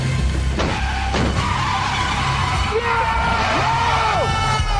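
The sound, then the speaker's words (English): Car tires screech and skid over a steady, loud engine roar, with a couple of sharp impact bangs near the start as a car crashes into a truck, intense throughout. “Yeah, car crash.”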